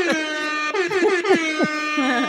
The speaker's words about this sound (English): Hip hop air horns. Yeah.